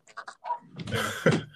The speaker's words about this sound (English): What's that, a little pup in the background?